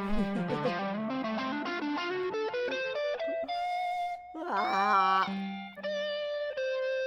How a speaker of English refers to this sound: Okay. My ears are hurting a little bit from the distorted guitar.